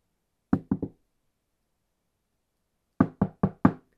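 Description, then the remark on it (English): Quiet, unanswered knocking on a bedroom door: three quick raps, a pause of about two seconds, then four more evenly spaced taps, with silence around them and no voices. “A discreet, unanswered tap at another door prompted her into venturing inside what could only be the doctor's bedroom.”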